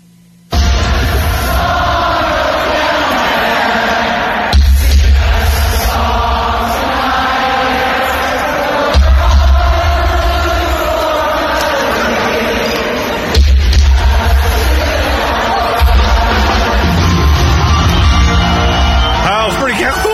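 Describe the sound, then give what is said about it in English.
A big live-concert crowd at a a singer's show roars and sings along with a song, a dense, loud wash of voices over booming music that swells every few seconds and never lets up, recorded on a phone video. “I actually got some video of the crowd during ….”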